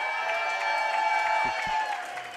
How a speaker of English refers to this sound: But anyway, it is awesome to be here tonight. We got a big crowd, a sellout crowd here tonight.